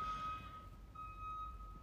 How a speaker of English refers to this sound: Oh my gosh, guys, I'm sorry. I'm in New York and someone's backing up their truck outside my window.